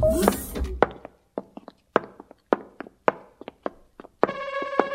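An electronic device signal, a radio signal from Delston 4: a string of sharp, irregular clicks and ticks, then a steady, buzzy electronic beep tone that holds to the end. No one speaks.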